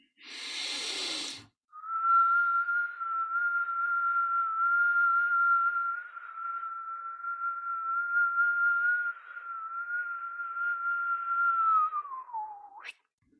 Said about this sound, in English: Now I want you to really ramp it up a bit. Take the biggest inhalation you can, and then hold the breath for maybe a couple seconds. And when you let it out, whistle.